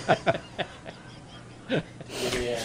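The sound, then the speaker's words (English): Heavy, raspy breathing from a video being played: several short, wheezy gasps in a loose rhythm, followed by a longer, rougher exhale that trails into noisy hiss, moderately loud. “I like the breathing.”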